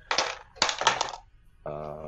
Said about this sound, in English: That's the dice. There we go.